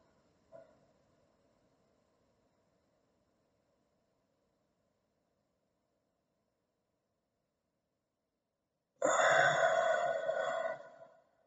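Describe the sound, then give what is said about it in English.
A faint, brief breath in, then several seconds of silence while the breath is held, followed by a loud, drawn-out voiced exhale like a sigh lasting about two seconds, demonstrating a slow breathing exercise. “a very slow breath in and then holding your breath and then a very slow breath out”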